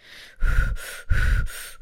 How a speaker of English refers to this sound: Breathe faster is the answer to that. It actually is. It's just about getting the air in and out of your lungs quicker. In your nose, out your mouth.